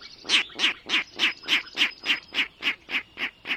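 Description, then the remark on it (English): A Virginia rail calls unseen from the marsh in spring, a steady run of about eleven harsh, nasal grunting notes in quick, even rhythm, clear with no other sounds. “Now there's a comical sound coming from the marsh. It's a Virginia rail, unseen but hardly unheard, ringing in the new season.”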